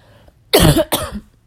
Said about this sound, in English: I apologize for now. I've been very sick, trying to get over it, so you will have some coughs